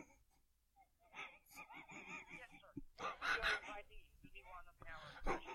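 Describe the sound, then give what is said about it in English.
Heavy, raspy breathing comes through a thin phone line during a telemarketing call on behalf of Ultimate Vacation, loud, with wheezy, squeaky inhales and rough exhales repeating for several seconds. “You're breathing so hard.”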